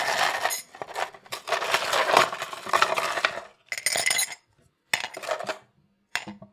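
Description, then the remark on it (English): Ice cubes clatter and clink into a cup in a dense rattling burst, followed by a few shorter bursts of bright clinking separated by brief silences. “And I've got my ice.”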